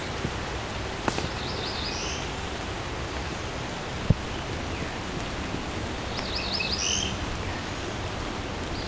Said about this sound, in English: This is my first time encountering this one. Cerulean Warbler. Nasally buzzy.